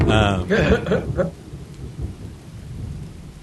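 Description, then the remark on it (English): A thunderstorm with a loud, rumbling burst of thunder at the start, fading into a steady wash of heavy rain that continues constant to the end. “You all are trudging through the downpour... And finally, you break through the wall of the storm”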